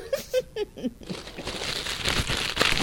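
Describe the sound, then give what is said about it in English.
Paper is crumpled up, a dense crinkling rustle that builds and grows louder over a couple of seconds, after a few brief vocal sounds at the start. “yeah, crumple it up.”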